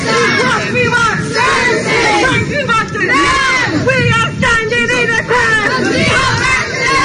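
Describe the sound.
A large protest crowd outside the front door of City Hall, many voices shouting and calling out at once in a loud, continuous roar of overlapping yells and chatter.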